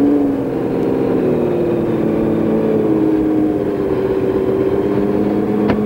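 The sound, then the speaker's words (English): A loud Porsche 917 race car engine is fired up and runs continuously, its deep throaty pitch rising and falling as it revs unevenly for several seconds, with no one speaking; the engine is ice cold, being started for a few warm-up laps. “Oh, so she'll fire here. There's the fire. Fire it nicely.”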